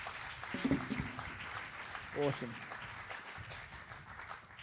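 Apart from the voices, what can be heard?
audience applause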